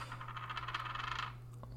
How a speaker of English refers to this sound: But anyways, let's gotta roll the dice first. There's no one keeping track of this otherwise.